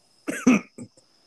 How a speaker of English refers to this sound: My apologies. I got a little cough fit going on.